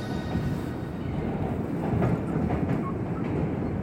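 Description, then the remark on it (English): A New York City subway train rumbles along steadily, a dense low roar of wheels and carriage noise with faint rhythmic clatter, continuous throughout with no voices. “My place that I return to again and again is really strange and specific, but it's a very specific seat after a very specific stop during a very specific time of day on a very specific train of the New York City subway.”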